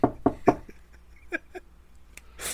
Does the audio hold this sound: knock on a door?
yes